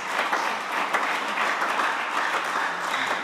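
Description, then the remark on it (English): Dense, steady clapping from many hands, like a crowd's sustained applause, holding an even loudness for a few seconds with no voices over it. “I don't know whether it's clapping or whether it, that's what I'm saying.”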